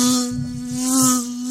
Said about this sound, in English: I've been like sitting there reading, and there's a fly or mosquito buzzing around me.